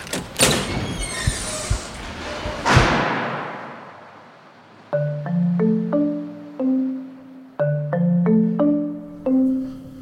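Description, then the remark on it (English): A door in a haunted building is opened with a burst of rattling and scraping that ends in a heavy thud, then quiet plucked musical notes play in short stepped phrases. “I'm gonna try to open this door.”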